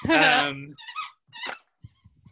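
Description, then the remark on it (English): A squeaky toy lets out a long, loud squeal followed by two shorter high squeaks as a dog named Pepper plays with it, with a few soft low sounds trailing off afterward. “Like, I don't like hearing you talk about this, but she's like, therapy dog, wee. He's not even letting me like get the toy.”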